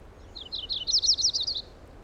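An Audubon's warbler sings a quick, bright trill of about ten sweet, slurred notes that swell in the middle and fade at the end, clear over a quiet background.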